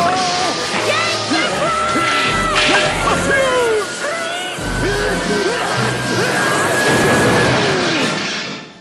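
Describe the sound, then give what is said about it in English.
A cartoon explosion in an animated film: an overcharged air conditioner flips out and blows up, a loud, sustained burst of crashing and rumbling, with excited yells and shrieks swooping up and down over the chaos. “And it all kind of builds up to this point where the air conditioner gets overcharged or something. It flips out and it blows up.”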